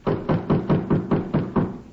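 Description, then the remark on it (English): Someone raps on a back door about eight times in a steady, fairly quick rhythm. The knocks are firm, with no voices. “Back door. Who uses it?”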